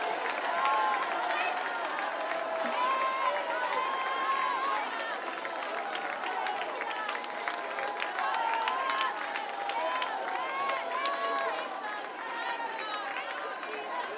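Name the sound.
audience shouting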